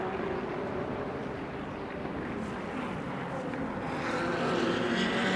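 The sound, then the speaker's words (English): A steady, dense roar of racing engines fills the scene, swelling louder toward the end as a group of GTP (LMDH) prototype race cars sweeps past at speed across the line during an IMSA race at Sebring. “Half distance, just over 10 minutes away as another clump of cars goes across the line.”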